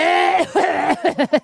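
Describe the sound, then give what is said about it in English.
A person deliberately demonstrates how they cough: a drawn-out throaty start breaking into a quick run of five or six short, loud coughing bursts, with no talking. “I'll do a little cough for you.”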